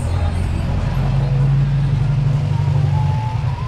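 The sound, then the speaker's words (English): Cars and motorcycles barrel down Main Street in downtown Fort Myers after sunset, following a hurricane; engines drone loudly and continuously in the foreground, with a faint hum of voices mixed into the background. “Cars and motorcycles barrel down Main Street.”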